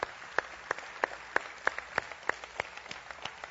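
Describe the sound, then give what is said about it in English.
Audience applause for armed forces veterans standing in the audience, in a steady, even rhythm, about a dozen sharp claps over a low wash of crowd noise, moderately loud, with no one speaking. “That isn't just a frivolous applause that we give you.”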